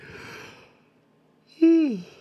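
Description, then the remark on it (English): A breathy yawn: a long airy inhale, a brief pause, then a loud voiced exhale that slides downward in pitch before trailing off. “Oh, yawns a little ahead, fuck.”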